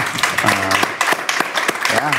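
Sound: people clapping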